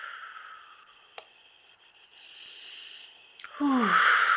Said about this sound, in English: Okay, now let's breathe in the solstice gateway energies.